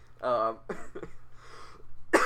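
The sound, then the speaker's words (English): A person coughs several times in close succession, harsh, with a throat-clearing sound mixed in and a final sharp burst at the end. “fuck this cough, man.”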